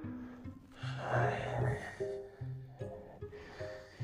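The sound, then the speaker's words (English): A voice imitates the heavy, wheezy mouth breathing of an overweight old man, loud, with several ragged breaths in and out over a low, steady tonal hum. “Imagine an overweight old man breathing from his mouth.”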